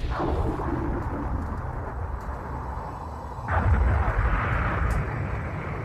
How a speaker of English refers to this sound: And when a violent electrical storm erupted in the skies of the planet I was on